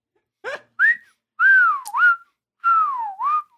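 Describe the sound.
Someone whistles a short song melody, clear and fairly loud, in a few sliding, swooping phrases separated by brief pauses, with no talking.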